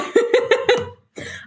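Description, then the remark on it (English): A close, loud fit of coughing after inhaling a little spit: four quick, sharp coughs in a rapid row, a brief pause, then one longer, raspier cough. No one speaks. “Did you just cough in my ear?”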